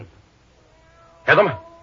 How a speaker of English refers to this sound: Thunderation, that's a cat meowing. Coming from that office right over there.